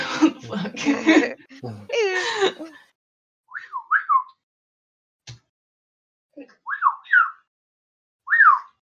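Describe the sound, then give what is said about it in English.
A burst of voices or laughter at the start, then several short, high-pitched whistle chirps with swooping pitch, spaced apart in quiet, and a single sharp click between them. “That was a long whistle.”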